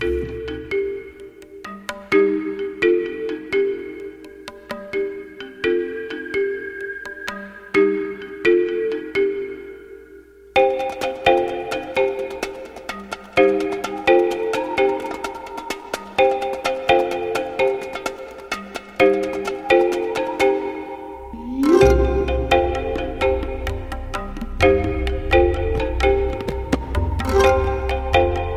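A bright, repeating marimba-like melody plays alone, joined by fuller layered instruments after about ten seconds and a deep bass swell near the end, steady and fairly loud throughout.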